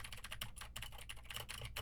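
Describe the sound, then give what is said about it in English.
Rapid, continuous typing on a mechanical keyboard with clicky Gateron blue switches, a dense stream of sharp, crisp keystrokes with no one talking. “Now I'm typing on a keyboard with Gateron blue switches to see how much of my voice versus how much of the keyboard it picks up.”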